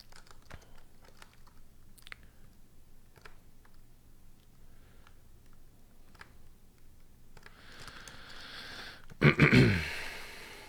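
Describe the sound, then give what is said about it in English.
Quick, irregular computer keyboard taps click away over a faint background hum, ending in a louder burst of rapid typing and a brief clatter. “Keyboard.”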